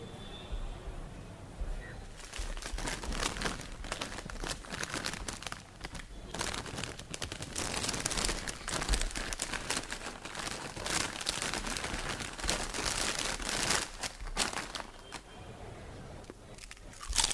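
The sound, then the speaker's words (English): A record-breaking chip packet from India crinkles and rustles loudly for about fifteen seconds, with dense crackling bursts and occasional crunchy handling noises, no talking; it was measured at 110 dB. “the loudest chip packet has now been found in India”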